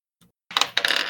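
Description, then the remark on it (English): A faint tap, then dice clatter and tumble across a hard tabletop in a quick burst of bright, rattling clicks, fairly loud, with no voices. “So, you guys want to hear the clicky-clacky?”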